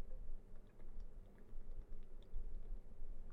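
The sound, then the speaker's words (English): Quiet sipping of water: soft wet mouth sounds and small clicks over a low rumbling background, with no one talking. “Let's get a sip of water, actually, to celebrate the elixir from Quigley.”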